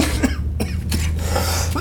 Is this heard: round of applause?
no